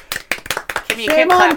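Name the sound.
applause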